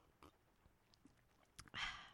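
A few faint mouth clicks and small noises, then a single loud slurping sip of hot coffee from a cup near the end, with no talking.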